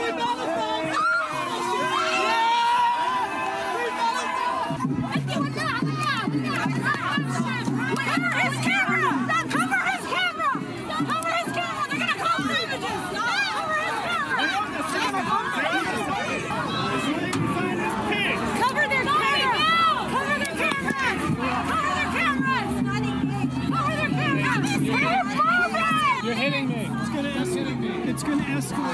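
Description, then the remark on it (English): A dense crowd of pro-Palestinian protesters at a protest shouting and screaming "Cover the camera" over one another, loud, with overlapping yells and chatter filling the whole span without a break. “Now, you out there may be wondering, after hearing this cacophony of noise, what were the pro-Palestinian protesters screaming, "Cover the camera," for?”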